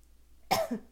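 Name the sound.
a cough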